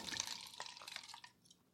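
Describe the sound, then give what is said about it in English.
Liquid glugs and splashes as liquor is poured for a shot from a steeply tilted bottle, a quick burst of gurgling that tapers off within a couple of seconds, with no voices. “He just like tilted the hell out the bottle.”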